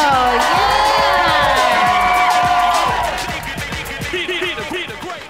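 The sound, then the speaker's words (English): A lively live-event audience cheers and whoops loudly for a guest on stage, with many overlapping high-pitched shouts and yells that gradually thin out and fade over several seconds. “All right, ladies and gentlemen, give it up for”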